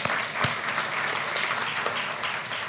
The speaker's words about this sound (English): Those guys are awesome. And so let's clap for awesome people.